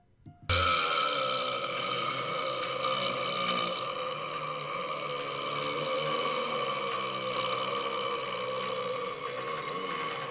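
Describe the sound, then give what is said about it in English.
A loud human belch, one of the biggest ever recorded, bursts in abruptly and drones on for nearly ten seconds, raspy and steady, with no talking. “So these are some of the biggest belches until we have a drum roll to the largest belch ever recorded.”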